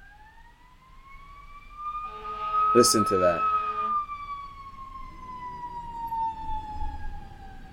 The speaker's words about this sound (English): as you can hear the sirens blow by.